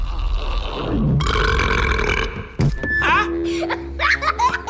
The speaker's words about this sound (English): And he finally just does this trick where he swallows the mic and burps it back out real loud, and it makes the kid laugh like an idiot.